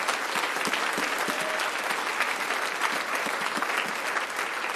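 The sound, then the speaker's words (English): Sustained applause from a large seated group giving a hand clap of praise to the Lord in the morning, a dense, steady wash of many hands clapping at once with scattered sharp claps standing out, loud and even throughout with no talking. “Give the Lord a good hand clap of praise as we're seated here this morning.”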